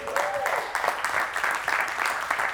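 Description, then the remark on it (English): A church audience applauds a preacher steadily for a couple of seconds, a dense crackle of many hands clapping at once, fairly loud and continuous with small swells, with no voices over it. “Why don't we give him a hand as well?”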